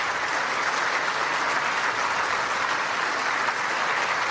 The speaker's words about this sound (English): It doesn't sound... like the clapping is in the same room as his audio is being recorded.